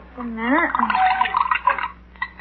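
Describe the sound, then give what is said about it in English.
Medicine, about 6 tablespoons, is poured into a glass of water, a brief gurgling, bubbly splash lasting about a second and tapering off, with a faint tonal murmur at the start. “Read the label on that medicine bottle and pour a dose in that glass of water, will you please?”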